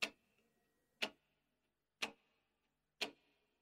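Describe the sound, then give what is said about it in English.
A clock ticks four times, one crisp click each second in a steady beat, each tick carrying a faint metallic ring amid quiet. “The clock is ticking.”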